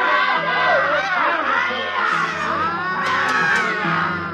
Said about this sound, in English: It was kind of sick. Men and women, heaven knows what they were before, teachers, mothers, anything, screaming and running up that hill.